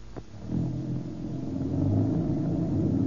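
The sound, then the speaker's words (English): A car engine starts up and settles into a low, steady rumble that swells slightly as the getaway car pulls away, fairly loud, with no talking. “Boy, what a difference. Some car, all right.”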